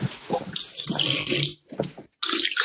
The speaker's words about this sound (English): Oh, that sounds awful. What was that? That sounds absolutely... That was terrible. Me drinking straight from the tap.